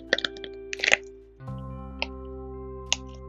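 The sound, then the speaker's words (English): Quick bursts of small, soft pops from a pop-it fidget toy, then two more spaced-out pops, heard over a steady low electrical hum with no talking. “I just crashed my pop it. It's fine. You wanna hear it again?”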